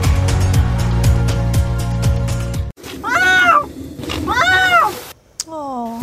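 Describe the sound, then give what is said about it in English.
A cat meows loudly and close by, two drawn-out rising-and-falling calls followed by a shorter descending one, after a few seconds of steady droning background noise. “So kitty.”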